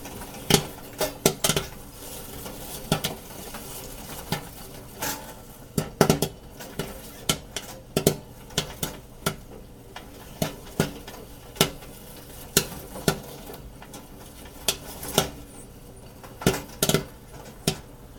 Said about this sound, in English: I'm not sure if it will make the recording, but you can hear the popcorn hitting the tray. And you can hear the lid lifting when the popcorn gets thrown out of the kettle.